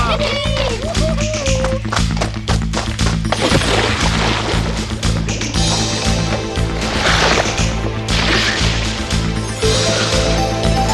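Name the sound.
people splashing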